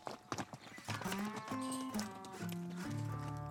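A herd of cattle with horses on the Green River Drift, a stock drive in Wyoming, lows in long, overlapping moos at shifting pitches, loud, after a brief opening of scattered knocks and clatter like hooves on the move.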